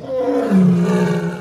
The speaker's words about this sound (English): The ambulance sirens sounded in the neighborhood with such shrillness that it frightened the animals in the zoo. The lion roared as if protesting all the commotion.